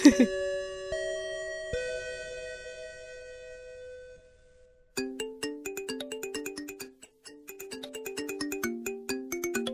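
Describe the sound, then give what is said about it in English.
A school bell chime closing the After School Anime Club show rings out: a few slow, resonant tones that linger and fade, then a brisk, bright melody of quick chime notes repeating. Clear and fairly loud, with no talking. “Just like always, that bell means this meeting of the After School Anime Club has come to a close.”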